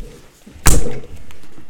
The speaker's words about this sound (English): Why are you slamming that down?